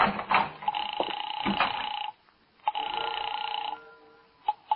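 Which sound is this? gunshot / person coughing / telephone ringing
telephone ringing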